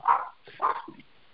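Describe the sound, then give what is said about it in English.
Dogs chasing a person in San Jose give two sharp barks in quick succession, loud, followed by a softer low whine trailing off into quiet. “I'm being chased by these silly dogs.”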